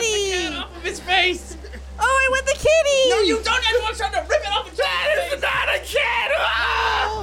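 People scream in terror, loud, close and nearly nonstop, with shrill voices rising and falling in pitch and overlapping in frantic bursts for several seconds, without clear words.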